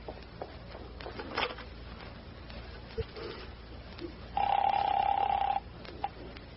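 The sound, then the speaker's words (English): A telephone in the back of a store being dialed: a few scattered clicks and handling knocks, then a steady electronic tone held for just over a second. “And now can I use your phone, sweet stuff? Oh, sure. There's one in the back of the store.”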